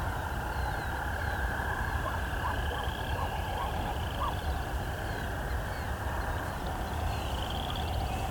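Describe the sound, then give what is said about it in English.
A Wilson's snipe flying low overhead gives a brief run of about six soft, hollow pulsing notes, set against a steady, dense chorus of frogs or insects. No one speaks. “Maybe that was because I had a Wilson snipe really close to me.”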